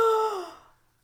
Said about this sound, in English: I love that gasp. It's beautiful.